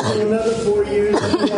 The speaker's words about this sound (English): Guests stood shoulder to shoulder to hear the president speak, many not wearing masks. In one video, you can hear someone coughing.